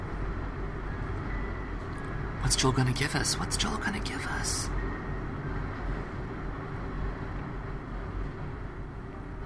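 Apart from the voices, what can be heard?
passing train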